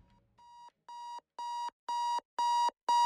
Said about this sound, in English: The morning arrived with the shriek of his alarm.